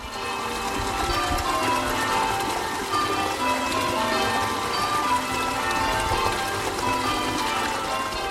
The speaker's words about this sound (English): Whilst out this weekend walking in my village of East Morling in Kent, I got to a point where I could hear the stream and the church bells ringing.